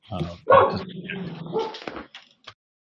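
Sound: dog barking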